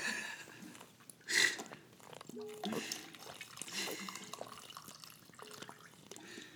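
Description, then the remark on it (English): Water pours from a big glass gallon jug into a cup, with gurgling glugs, splashy bursts and a rising liquid tone as the cup fills over several seconds. “Let me fill my cup. This big old glass gallon jug.”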